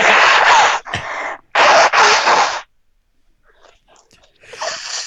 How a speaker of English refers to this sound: I gotta blow my nose. I've got water up my nose. Hold on.